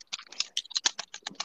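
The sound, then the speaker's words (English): Rapid, uneven clicking of a computer keyboard heard over a Discord call while someone plays Roblox. A dense burst of about a dozen sharp keystrokes with no voices. “Someone stop clicking the keyboard.”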